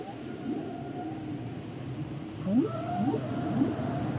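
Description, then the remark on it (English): A whale song plays with a long, low tonal moan, then three quick rising upsweeps in a steady rhythm over a hazy underwater background. No voices are heard. “Pensarás que a whale es una ballena.”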